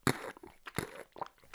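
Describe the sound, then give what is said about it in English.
A mouth imitating someone drinking from a water bottle: two loud, wet, crunchy gulping bursts with smaller clicks and pops between them, no speech. “I can do the sound of somebody drinking from a water bottle.”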